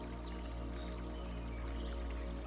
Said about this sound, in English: You notice the water is pure, clean, cool, and refreshing. Listen to the gentle flow of the rapids.